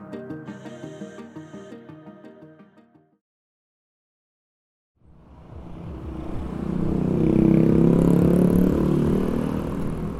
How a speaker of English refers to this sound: Even if you haven't seen it for yourself, our correspondents on the show keep pointing out just how bad traffic can be in many Asian cities. It's not just cars. In a lot of places, it's also mopeds and motorbikes and rickshaws and tuk-tuks.